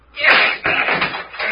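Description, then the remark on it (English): A heavy thud and crash as a locked door gives way, followed by a jumble of clattering and scraping impacts, loud, with a voice briefly mixed in. “She's given away.”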